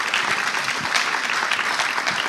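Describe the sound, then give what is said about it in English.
An audience applauds steadily, a dense, even wash of many hands clapping at once with no single claps standing out, sustained at a fairly loud level throughout. “I know you're not looking for thanks, but I think that you owed it a round of applause.”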